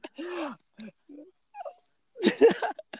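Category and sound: animal, dog whimpering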